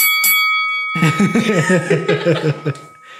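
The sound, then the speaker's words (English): A boxing ring bell clangs twice in quick succession, its bright metallic tone ringing on steadily while people break into chuckling laughter over it. “Ring the bell.”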